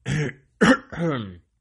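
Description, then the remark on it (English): A loud cough sounding like a throat clearing, in three quick rough bursts over about a second and a half, with no talking around it. “Sorry for people, I just coughed in your ear.”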